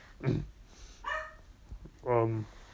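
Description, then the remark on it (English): A dog barks three times at uneven intervals, each bark short and clear with a slight whiny edge, the last one longest, with no one talking. “my dog's barking, I gotta go.”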